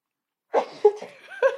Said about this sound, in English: Sorry. It's going to make me sneeze.